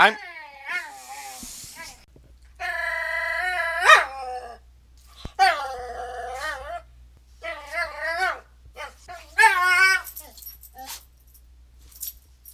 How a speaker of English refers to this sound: And that's what my dog sounds like.